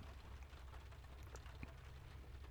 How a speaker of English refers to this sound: And wow, it's really raining out there. Can you hear it?